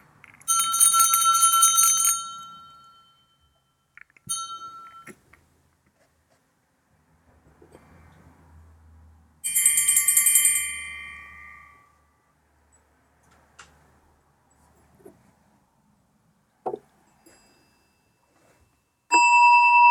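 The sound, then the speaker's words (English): A meditation bell is struck three times during a sound meditation, about ten seconds apart. Each bright, clear ring sustains and fades into near silence, with no talking around it. “And then after practicing this bell and some noticing sensation, then it will be some quiet time for you to do on your own.”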